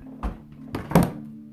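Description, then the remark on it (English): A milk carton is set down on a table: a couple of soft, dull thunks followed by a firmer, louder knock, with a faint steady hum in the background and no talking. “And now that I got the milk, I'll go ahead and place it down.”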